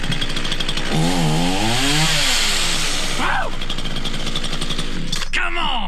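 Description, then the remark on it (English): A running lawnmower balanced on a man's chin during a 63-meter Guinness World Record walk; its engine runs loud throughout, a steady, rough mechanical roar, while excited voices shout and cheer over it. “63 meters, a running lawnmower on the chin.”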